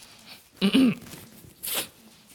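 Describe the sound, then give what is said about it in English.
A single sneeze: a short voiced catch followed a moment later by a sharp, hissy burst of breath, moderately loud. “Bless you.”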